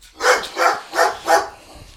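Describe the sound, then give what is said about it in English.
Dogs bark four times in a quick, steady rhythm, sharp and fairly loud, followed by a brief quiet stretch. No one speaks. “You beep it, and like it like makes a big loud sound, and they stop barking.”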